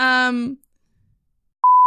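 A brief drawn-out vocal sound fades into silence, then a loud, steady, high-pitched censor bleep cuts in abruptly over a spoken street address and holds as a single pure tone until the end.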